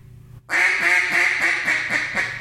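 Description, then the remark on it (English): A duck call blown as a boss hen: a loud, rapid run of about seven raspy hen quacks, steady in rhythm, with no talking over it. “It's unbelievable how ducky that boss hen is.”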